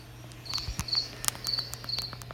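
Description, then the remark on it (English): Muffled, high-pitched cricket chirping heard from inside a shut square trap door in the ground, in short, regular trilling bursts, fairly quiet, over a steady low hum with a few sharp clicks, and no one speaking. “It kind of muffled the noise of the chirping and all of that after he shut it.”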